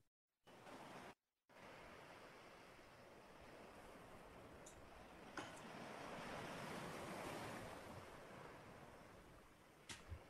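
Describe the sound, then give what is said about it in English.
Ocean waves roll onto a shore in a steady, hissing wash that swells to a fuller surge midway and then eases back. No voices, just continuous surf at moderate distance. “And as you continue to walk, eventually you can begin to hear the sounds of the rolling waves.”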